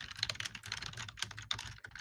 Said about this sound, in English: He's typing noisily. Yeah, that's all right. Sorry. Well, you're writing a friggin' novel.